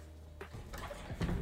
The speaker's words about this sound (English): I can't slam the door. It just slingshots back.